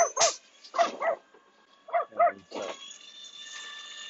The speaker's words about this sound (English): I don't know if he thinks trucks are just big dogs. Because he can't. There he goes. He's barking at this truck.